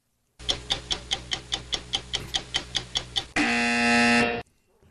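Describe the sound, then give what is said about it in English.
About a dozen quick, evenly spaced ticks run for three seconds, then a loud, harsh buzzer, used to signal a boring caller, blares for about a second and cuts off abruptly. No one speaks. “that's a boring caller or something. We'd no, signal Michael. Crazy to play Bruce that. Buzzer.”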